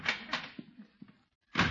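A back door is opened and shut as the egg man comes in, with a quick rattle of the latch, a few soft wooden thunks, and a final brisk clatter as it closes.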